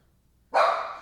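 animal, dog barking

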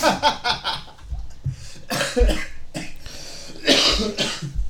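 human body sound, coughing fit

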